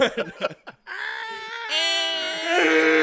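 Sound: person imitating a scream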